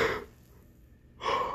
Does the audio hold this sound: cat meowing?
no